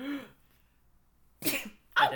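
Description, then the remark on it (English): A sneeze bursts out in two sharp, noisy blasts, fairly loud, after a brief vocal sound and a short quiet pause. “Oh, bless you. Was that your sneeze? You have a nice sneeze.”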